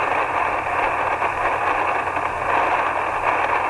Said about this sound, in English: I can't believe I'm not hearing anything on 80. Man. Antennas connected. There's as much static on 80.